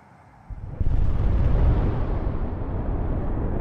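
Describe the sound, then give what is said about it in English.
A deep, rumbling boom erupts after a brief quiet moment, then rolls on as a sustained low roar that slowly fades, heavy in the bass like a far-off explosion, heard in the coal mining town of Mezhdorachensk at two minutes to one in the morning on a cold Thursday night in March. “A moment after Captain Kudrinsky said, "Everything's fine," the residents of the coal mining town of Mezhdorachensk were woken by the sound of a distant explosion.”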